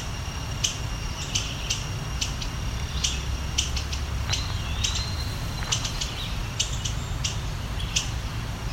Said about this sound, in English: This one, for years, anytime I would see an indigo bunting that wasn't a male, oh, it was always confusing. They really do look like just generic brown birds. But what gives them away is they're very feisty, like this.